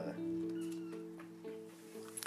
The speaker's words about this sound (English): Oh, kitty cat. No, we're not going up in the ceiling today. Go on, buddy. Go on. Silly kitty cat.